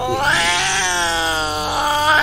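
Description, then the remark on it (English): A cat named Esmeralda caterwauls in one long, loud, drawn-out yowl, wavering in pitch and rising again toward the end, as it is put into a hat. No one speaks over it. “What do you think of a cat in the hat? That's enough, Esmeralda. Into the hat.”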